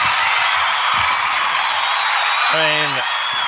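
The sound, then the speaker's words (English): Dense, sustained applause roars steadily throughout, like a standing ovation, with a brief voiced whoop or call rising out of it near the end. “I'm sorry, but that disturbs like a standing ovation.”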